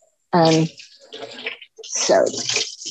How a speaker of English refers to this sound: I'm going to wash my hands, so excuse the water.